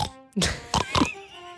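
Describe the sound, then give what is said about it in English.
A voice imitates a pig's oink, a few short nasal grunts in quick succession, fairly loud, with a faint steady hum underneath. “Oink, oink, baby.”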